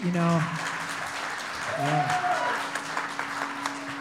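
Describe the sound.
A crowd applauds with dense, steady clapping for about four seconds, punctuated by a couple of brief cheering voices near the start and middle, over a faint constant hum.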